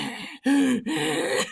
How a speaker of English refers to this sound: I was like, oh. Sound like a grizzly bear trying to catch his breath.